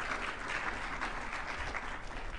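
An audience applauds with steady, dense clapping that holds an even, fairly loud level throughout, with no voices rising above it.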